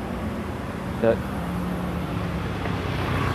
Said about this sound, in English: Coincidentally, one feeder bus is actually terminating. It's actually coming to the bus stop. Oh, what a coincidence.